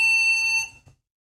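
A loud, piercing electronic alarm tone from a daily health check alert sounds steadily for about half a second before cutting off, followed by a brief soft clatter, with no voices.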